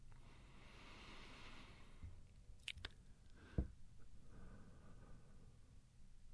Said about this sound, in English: And then silence. Silence except for the crunch and crunch and crunch of bone.